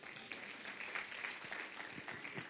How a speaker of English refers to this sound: Clap for Jesus.